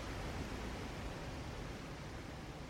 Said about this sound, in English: You can kind of hear the birds in the background and the water kind of moving deceptively quickly downstream.